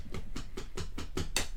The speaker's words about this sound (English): No, it was Bully scratching, and he was scratching at my chair.